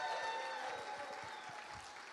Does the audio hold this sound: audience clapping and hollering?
yes